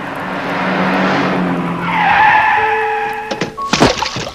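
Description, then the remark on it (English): A car skids hard to a stop in a rough part of a city, dumping a young girl out onto the pavement. Its tires squeal loudly with rising, high-pitched screeches over engine noise, ending in a few sharp clunks. Loud, no voices. “A car has just dumped a young girl out in the roughest part of the city.”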